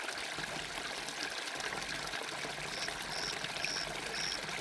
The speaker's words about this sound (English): You are listening to the relaxing sounds of a soft, rippling river. Soundscape for sleep.